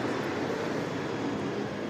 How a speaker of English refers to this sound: Oh, plane.